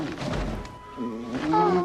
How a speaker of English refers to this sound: Aww, it's a baby one. Sounds so quaint and cute. It's a baby Triceratops.